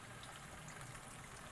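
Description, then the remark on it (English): Chicken bone broth pours steadily into a hot pot, filled halfway up to deglaze it, a continuous soft rush and sizzling hiss that holds evenly for a moment, fairly faint and with no voices. “So pour that in halfway. Halfway up the pot. Deglaze.”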